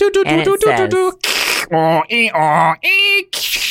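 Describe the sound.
A voice imitates a dial-up modem connecting: a string of loud warbling, squealing tones broken by bursts of hissing static, lasting just under four seconds.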